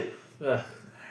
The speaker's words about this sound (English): I got one more year till I start sneezing like that.